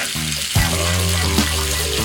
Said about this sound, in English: Sizzle, sizzle, crackle, crackle. Moist. We are enjoying something from our good friends at Kentucky Fried Chicken.